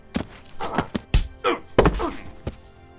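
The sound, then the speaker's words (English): A flurry of heavy punches lands in quick succession, with loud thuds and whacks at an uneven rhythm, ending in one last solid blow: Spacehawk knocking out the best fighter in Queen Haba's kingdom. “You knocked out the best fighter in my kingdom!”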